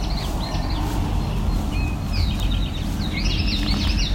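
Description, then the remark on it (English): An eastern towhee sings its drink-your-tea song a few times, each phrase a couple of sharp notes ending in a quick trill, over a steady low rumble of background noise. “Drink tea, part of the drink your tea, right there, eastern towhee.”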